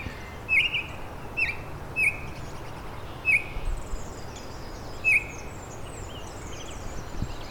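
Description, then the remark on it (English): Baltimore Oriole song: short, clear whistled notes, five or so, spaced irregularly over a steady outdoor hiss, with faint higher bird chatter in the background. “Quite a diversity of Baltimore Orioles songs here today.”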